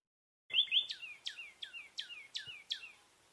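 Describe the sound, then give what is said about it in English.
A quick series of about eight clear, downward-slurred bird whistles, like a northern cardinal's song, repeats evenly against a quiet background, in a reconstruction of a spot in Florida in 2017 where two common nighthawks and one northern cardinal were counted. “Instead of 30 birds counted from 9 species, only 2 species of birds were counted that day, 2 common nighthawks and 1 northern cardinal.”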